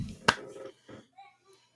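slap to the face

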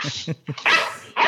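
dogs barking

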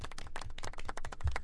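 golf clap

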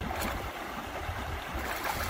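flowing river water

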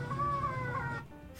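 cat meowing

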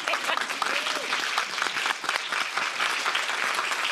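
audience round of applause

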